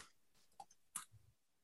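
A few sharp, close computer clicks arrive in an uneven sequence, with a brief low thump after them and quiet room tone between. No one speaks.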